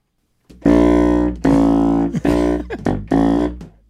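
A contrabass saxophone blasts a series of loud, buzzy low notes, about five in a row with brief breaks, each tone thick with rasping overtones and no voices.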